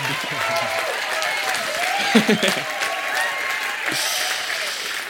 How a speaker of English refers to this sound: And it's the first time he's preached in our church. So come on, let's give him a great applause and encouragement.